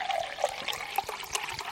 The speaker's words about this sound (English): Oh my God, we haven't sipped for a while. We both got to do a little chug to make up for it.